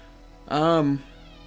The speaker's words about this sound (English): Just for extra creepy effect. I don't fucking oil my doors just for the purpose of the podcast. This is for you guys.